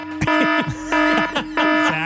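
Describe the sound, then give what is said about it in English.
A loud, harsh alarm buzzer blares in three or four repeated bursts, each a steady droning tone, with swooping descending sounds between the blasts and no talking. “But if I was a daycare worker and I knew that a full moon affected those young kids, this would be the alarm.”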